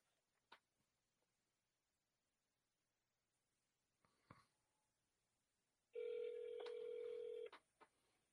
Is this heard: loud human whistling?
no